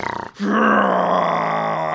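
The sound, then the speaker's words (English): A person imitates a mad bull's snarling roar with a loud, rough, sustained growl that holds steady for over a second after a brief stuttering start. “So you sort of like hear behind you just like a snarling roar, like a mad bull, just like a.”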